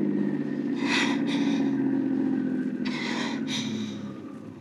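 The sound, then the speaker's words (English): A car engine hums steadily, broken by two brief hissing bursts, then the motor winds down and fades as the car slows and comes to a stop. “Okay, I'll stop the car”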